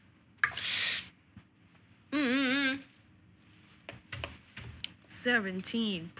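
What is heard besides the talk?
dice rolling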